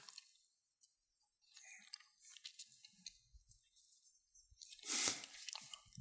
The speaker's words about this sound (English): I'm hearing a lot of pages turn today. That's awesome. You know, in this day of digital, we have so many that we don't hear that too often anymore.